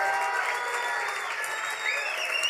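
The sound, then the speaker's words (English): A church audience claps and cheers for fifteen seconds of celebration at the preacher's call, a dense, steady wash of applause, with raised voices and a sustained musical tone threaded through it throughout. “If you receive that with me, take 15 seconds and celebrate it. Clap your hands, all ye people.”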